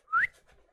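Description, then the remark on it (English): A single short, sharp whistle sweeps quickly upward in pitch, loud, then fades into faint background noise. No one speaks. “you hear the whistle, and you recognize this as Lyris's symbol.”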